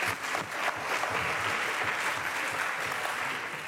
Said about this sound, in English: Can we just give Ben a hand? Thank you for what he shared with us.